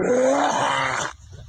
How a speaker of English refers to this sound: There's our dog.